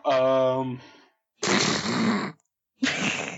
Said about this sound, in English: Way to blow your nose in the microphone.